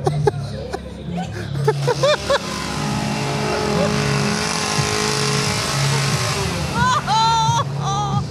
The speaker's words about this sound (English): And by zeroes in, I mean he charges at her, chainsaw revving.